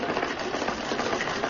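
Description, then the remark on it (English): A sewing machine runs with a steady, busy mechanical whirr, a continuous buzzing rattle that holds an even level throughout, with no voices over it. “Sewing machine? A sewing machine.”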